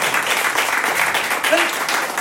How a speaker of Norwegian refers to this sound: Veldig bra, det det. Applaus for det.